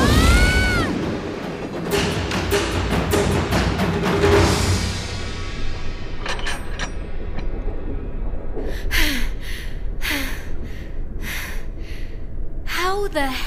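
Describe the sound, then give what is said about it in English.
A train rushes past with a heavy, steady rumble and a series of sharp clacks, opening with a brief high screech that fades as the roar continues throughout. “There's a train approaching. It won't stop.”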